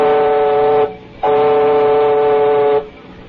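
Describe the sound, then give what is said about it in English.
Two loud, sustained whistle blasts from a person whistling, with a rich, chord-like tone, the first short and the second much longer, with no talking. “Oh, maybe just whistle. Bill, I've been practicing.”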